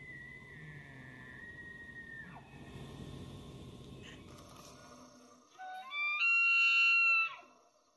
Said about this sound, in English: … also has a elk sound for us, so we can hear that.